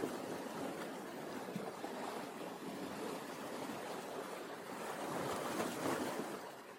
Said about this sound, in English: I love the sound of that water. That's pretty good.